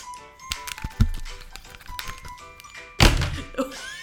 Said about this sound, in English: So it's your turn to roll the dice. Go ahead. Okay, hold on.